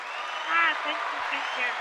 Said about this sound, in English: Yo, let me give a round of applause for her.